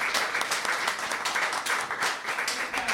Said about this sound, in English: Big round of applause.